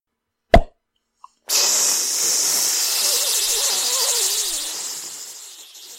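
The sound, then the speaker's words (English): A man mimics a champagne cork with his mouth: pulling his right thumb out of his left cheek gives one sharp pop and a tiny click, then his tongue against his teeth makes a long hissing fizz that holds steady for several seconds before gradually fading out. No talking. “I mean, the man who took himself for a bottle of champagne, and always went off with a pop and a fizz, in this fashion.”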